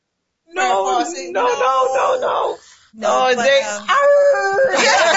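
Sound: dog howling and whimpering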